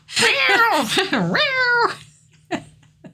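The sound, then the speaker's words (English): A person voices a quick string of cat-like meows and yowls, rising and falling in pitch over about two seconds, followed by a couple of short breathy clicks. Fairly loud. “My random cat sounds.”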